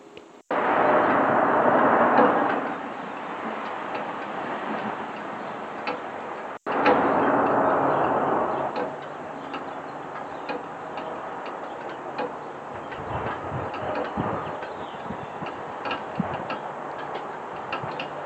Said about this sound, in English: Unfortunately, all I can capture at 6:45 in the morning is a bunch of traffic in the distance and the slight sound of the dripping of the downspouts.